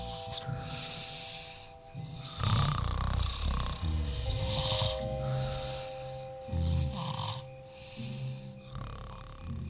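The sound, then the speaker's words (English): Loud, rasping snores from scarecrows in a field rise and fall in a steady rhythm, each breath a harsh, hissing rumble, with a faint droning tone running underneath. “It's the scarecrows. They're snoring.”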